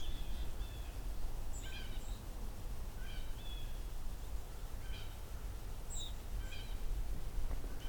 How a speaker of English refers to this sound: Something peeping here. I think that's white-throated sparrows.